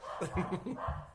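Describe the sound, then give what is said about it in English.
Muffled barking of two dogs from another room, several short barks in quick bursts, fairly faint. “I have two dogs. They're in another room, but they're barking.”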